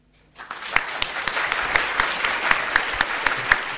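An audience breaks into steady applause after a brief silence, applauding a professor before she begins her presentation, many hands clapping in a dense, even patter with sharp individual claps popping out, sustained at a fairly loud level throughout.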